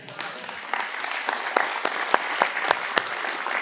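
A crowd applauds the announcement of baptisms planned for the last Sunday of 28 Days to Change, many hands clapping in a dense, even wash with sharper individual claps popping out now and then, lasting several seconds at moderate volume with no talking.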